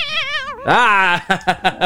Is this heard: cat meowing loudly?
yes